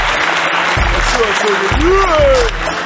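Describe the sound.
A show audience claps steadily in a dense, loud wash of applause, with voices rising and falling through it as people cheer and call out.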